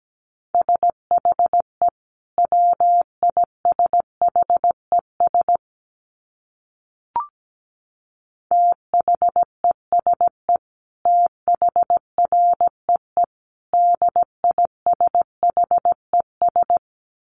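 Morse code practice tones at 17 words per minute: a single steady mid-pitched beep keyed into rapid dots and dashes in word-like bursts, with a pause and a soft click midway before the keying resumes.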